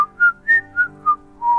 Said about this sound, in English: And then … whistles a small tune.